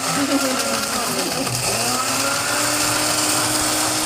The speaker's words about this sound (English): Ferris does not like the blending.